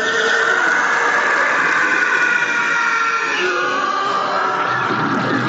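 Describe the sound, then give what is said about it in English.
A TIE fighter screech: a loud, continuous, harsh roaring howl with wavering shrill tones that slide slightly in pitch, holding steady for over five seconds with no talking. “And the hum versus the TIE fighter screech.”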